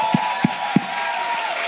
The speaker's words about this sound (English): So that is the end of our blast tag segment of the show. Clap for our guests.